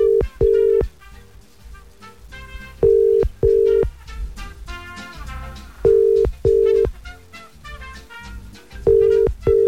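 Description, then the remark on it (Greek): A telephone line rings out as a radio morning show places a call to a prize-winning listener, with paired tone bursts repeating about every three seconds, clear and steady over soft background music. “Πάμε να πάρουμε την Εύη από τον Τάκη.”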